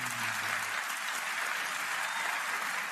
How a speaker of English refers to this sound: Wow. The whole audience is applauding.